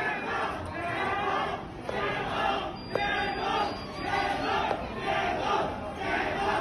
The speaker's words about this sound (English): A similar demonstration appeared in the city of Shenzhen. There, crowds of people were heard shouting, "Stop the lockdown."